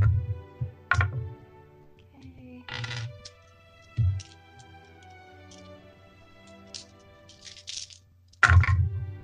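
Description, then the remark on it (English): Several sharp, hard clattering impacts scattered irregularly across a few seconds, with louder bursts at the start and end, as many dice tumble and knock together on a table, rolled at disadvantage for a Scorching Ray spell. “It's going to be hard because there's a lot of dice.”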